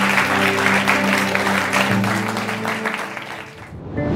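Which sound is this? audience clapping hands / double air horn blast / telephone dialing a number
audience clapping hands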